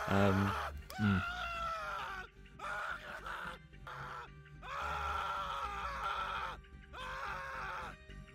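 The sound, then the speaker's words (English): A man screams in agony as he dies after being clawed by the Velocipasta, letting out a series of long, strained, wailing cries separated by brief gasping pauses, loud throughout. “I mean, he gets clawed at by the Velocipasta, and then proceeds to sort of scream in an ungodly spends manner.”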